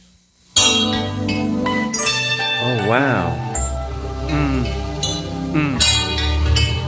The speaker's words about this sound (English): And what instrument is that? Some kind of chimes? Some sort of keyboard sound. I had a YouTube window open still that I didn't realize from some research I was doing for my show earlier.